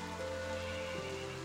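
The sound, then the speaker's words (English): Steady rain pattering down in a constant soft hiss, fairly quiet and even throughout, with a low sustained tonal hum underneath and no voices. “Once again, raining.”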